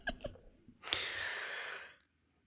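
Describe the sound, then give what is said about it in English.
A drawn-out yawn: a few small breathy clicks, then a sudden airy inhale that swells into a long, steady breathy sound lasting about a second before cutting off into silence. “I can't believe how much I'm yawning.”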